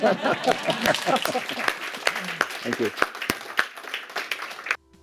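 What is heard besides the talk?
applause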